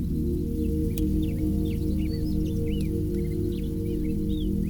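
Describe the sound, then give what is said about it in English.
Soft, scattered bird chirps and short high tweets flit about over a steady, loud low humming drone, with no one speaking. “Or animals and birds chirping softly.”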